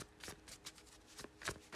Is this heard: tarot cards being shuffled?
yes